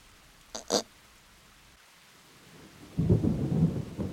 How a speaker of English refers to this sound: When the rain began, Pooh was asleep. It rained and it rained and it rained, and he slept and he slept and he slept.